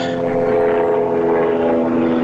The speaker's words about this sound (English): Is somebody in a helicopter? World of Warcraft. What was that? Is World War III is about to start. That's just London, you know, we're trying to patrol and secure the area.